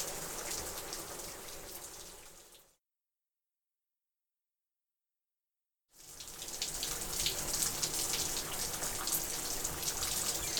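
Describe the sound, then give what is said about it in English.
Shower water runs in a steady hissing spray, stops abruptly for about three seconds of silence, then resumes just as full and continuous. No one speaks. “Ship, Forky, I'm gonna take a shower because I need this so badly right now.”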